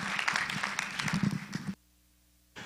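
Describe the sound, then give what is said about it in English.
An audience applauds as a pastor is called up to bring a word during a church service, a dense, steady wash of many hands clapping, which cuts off abruptly into near silence with a faint low hum, then briefly returns at the end. “Come on, let's give him a round of applause.”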